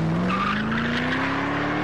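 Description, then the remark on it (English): In a 2004 Ford GT commercial, the car's engine revs steadily upward while its tires squeal and skid across a deliberately wetted road. It is loud, with no one speaking. “How they purposely make the road wet to make it slide around.”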